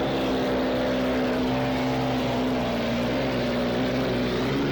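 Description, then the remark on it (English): A powerful racing boat engine roars loudly and steadily, a dense droning growl with a strong low hum that holds throughout, with no voices. It is the Smirnoff racing boat going by at a boat race. “Boy, that's a loud boat.”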